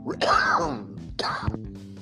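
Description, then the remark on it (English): Two harsh coughs about a second apart, each breaking into a raspy, voiced strain, with the second trailing off into throaty clearing. “I had a cough attack.”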